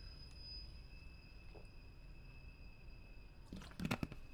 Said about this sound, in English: Sorry, needed a drink of water real quick.